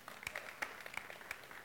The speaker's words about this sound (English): So Paul said, you can clap right there. Come on.